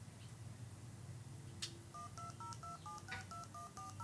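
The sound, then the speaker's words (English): A rapid run of telephone keypad (DTMF) tones played by a program to dial a phone number, about nine short dual-pitched beeps in steady rhythm, each a clean pair of mid and higher tones, over a low background hum. “Okay, so that's the number being dialed.”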